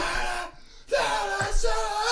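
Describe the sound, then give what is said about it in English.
A voice lets out a loud, strained scream in imitation of a spectator screaming in the stands, breaking off in the middle, then rising again in a second harsh burst over a noisy background. “There's just someone screaming in the stands.”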